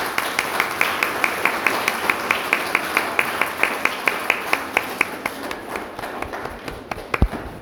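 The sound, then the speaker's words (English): A church audience applauds the readers after a Gospel reading, a steady wash of many hands clapping with a few sharper, evenly spaced claps standing out, fading slightly toward the end. “We might give them a clap.”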